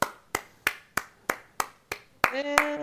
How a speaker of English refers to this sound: Clap, clap, clap.